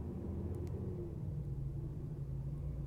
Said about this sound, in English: I don't know why there's a car outside that is making very loud noises.